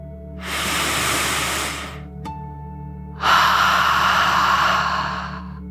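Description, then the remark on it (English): A slow, deep relaxation breath drawn in, a brief pause, then a long, loud exhale, airy with a broad hiss, no talking. “As you imagine your whole body lightly floating in the water, let's take one more deep dragon breath, in and out.”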